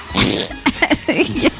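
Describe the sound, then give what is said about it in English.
A sputtering fart from a gorilla, fairly loud: a rough, breathy burst followed by several short squeaky pops in quick, uneven succession, with no talking. “That was a real fart?”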